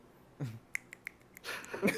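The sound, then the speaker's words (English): Several crisp finger snaps, about four or five in quick, uneven succession, sharp and clicky, framed by short breathy vocal noises at the start and end. “You gotta snap your fingers every 5 seconds.”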